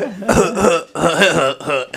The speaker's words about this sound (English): My weed smoking cough.